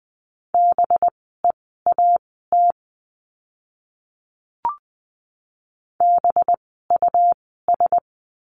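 Morse code practice words for the letter b at 20 words per minute: a steady mid-pitched tone keyed into quick dots and dashes, in two bursts separated by a pause broken only by a brief click. No voices.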